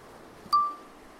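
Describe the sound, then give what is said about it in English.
A single bright bell ding rings out once at the coast in early March, with a clear metallic tone that fades over about half a second against faint background hiss. “The bell. Oh, my God, the bell. Wait, keep ringing.”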